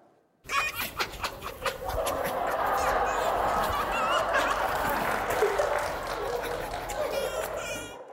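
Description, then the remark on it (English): Foxes giggling: a burst of quick, panting chuckles leads into a continuous stream of high, chattering, cackling calls that stays loud and busy for several seconds. “We have video of foxes giggling.”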